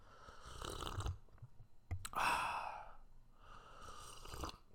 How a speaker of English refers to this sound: So let's get a little coffee sip audio.